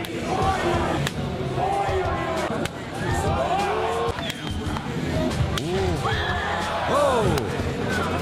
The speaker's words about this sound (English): Because I've found the best sport in the world, sport slapping. The first ever slapping championship was held recently in Siberia. And it's just what it sounds like. Two men, face to face, taking turns slapping each other until someone concedes.